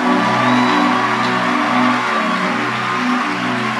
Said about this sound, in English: I think he deserves a clap in this place.